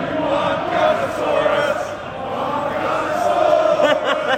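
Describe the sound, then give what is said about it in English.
A large stadium crowd sings a song for Gunnosaurus together in a steady, continuous chant, many voices blending into a loud, sustained roar of melody with no break. “Song for Gunnosaurus there, ladies and gents.”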